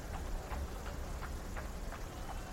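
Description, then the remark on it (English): Steady rain hisses throughout, with soft drip-like taps repeating at an even pace, roughly three per second. No one speaks. “kind of pops open his pocket, looks at the letter, trying to protect it from the rain”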